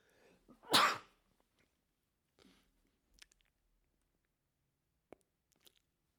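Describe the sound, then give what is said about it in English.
A single loud sneeze bursts out near the start with a sharp breathy blast, followed by quiet stillness broken only by a few faint clicks and small rustles. “I'm sure you heard me just sneeze.”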